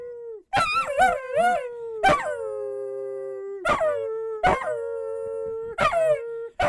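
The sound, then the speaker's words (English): A female dog howls in long, sustained, wavering notes, about five in a row with short breaks, fairly loud, while a person howls along, imitating it in a matching pitch. “What if you're just saying the N-word in dog and she's repeating it back to you?”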